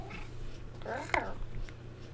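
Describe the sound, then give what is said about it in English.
A single drawn-out meow, voiced by a person imitating a cat, rises and falls in pitch over about half a second with a brief click near its peak, against a low steady hum. “Kitty, kitty, kitty. That's a pretty kitty. That's a pretty kitty. Meow.”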